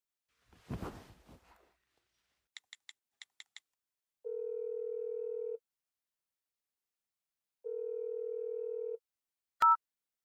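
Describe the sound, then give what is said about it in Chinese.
A handset rustles as someone places a telephone call: five quick keypad beeps dial out, followed by two long, steady phone tones separated by a pause, ending with a sharp click as the line connects. No one speaks. “你可以打电话给他问一下”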